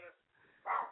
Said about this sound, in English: oh, that dog is back in the studio. Get the exterminator.